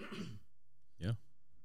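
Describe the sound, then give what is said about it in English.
Two short, rough coughs from someone coughing aside while trying to mute during a conversation, with a pause of under a second between them; the first is breathy and the second is a louder, throaty bark, with no talking around them. “I was trying to mute my button while I cough on the side.”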